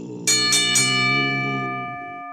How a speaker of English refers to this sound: The crowd roars in anticipation. Ring the bell.